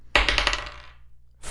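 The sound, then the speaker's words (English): Dice rolled for an insight check clatter and rattle across a hard surface, a bright rolling burst that fades out over about a second, followed by the start of another sharp clatter. “I would like to roll insight now and see if he's telling the truth.”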